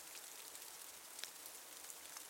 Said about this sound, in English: and then you look at the door that is open to the courtyard, which leads out to the rain outside. And like any good, intelligent person, you step into the rain.